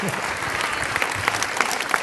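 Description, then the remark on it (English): A crowd at a church service applauds steadily to show appreciation to a speaker, a dense wash of many hands clapping at an even, moderate loudness with a few sharper individual claps standing out, no voices on top. “Would you show your appreciation to Steve, please?”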